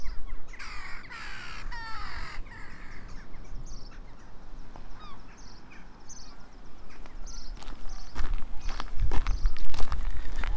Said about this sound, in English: Walking down to Lizard Point, and there's a chough right in front of me.